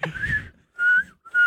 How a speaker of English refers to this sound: I'm nervous I'm not going to be able to whistle. Good. I hope you can.